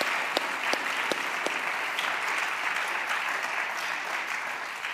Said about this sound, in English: Yes, please clap